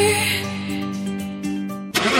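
sports car engine starting

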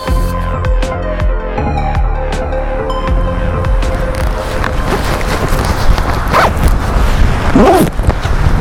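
wind blowing outdoors

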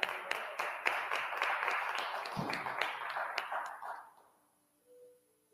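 audience clapping hands

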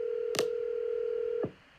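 telephone dialing tones

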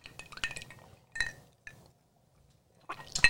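glasses clinking

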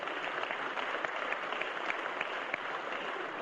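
audience applause

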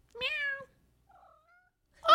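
cat meowing

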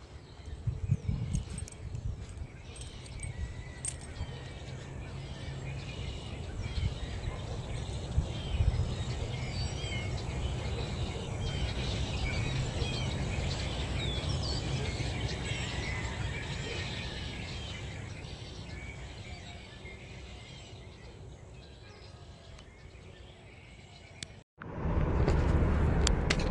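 birds chirping and singing

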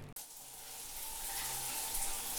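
shower water running

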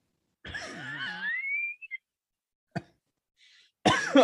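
coughing

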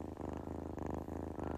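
kitten purring

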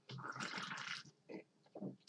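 sipping a drink

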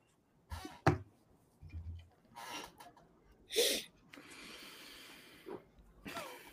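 chair squeaking

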